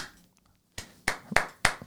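A short burst of hand clapping: four sharp, crisp claps in an even, steady rhythm after a brief silence, moderately loud with no voices.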